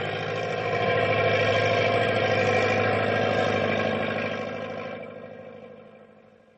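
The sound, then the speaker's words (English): A heavy truck engine drones steadily at a low, straining pitch as it labors through snow drifts, holding loud for several seconds before easing off and fading slightly toward the end. “going's really getting rough, even for Big Brute. Nothing to worry about, pal. I still have two lower gears to shift into.”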